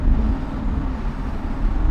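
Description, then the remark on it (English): A steady, loud low rumble of a car moving at speed through a tunnel with a window partly down, with a broad roaring wash of road and wind noise that stays constant throughout, no voices present. “I was saying, look, we're in a tunnel, so don't put it down the window all the way.”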